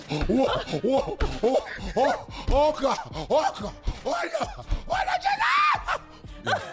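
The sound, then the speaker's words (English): A person imitates a chainsaw with their voice: loud bursts of buzzing that rise and fall in pitch like revving, repeating rapidly before ending in a higher, sustained whine. “Put that chainsaw on.”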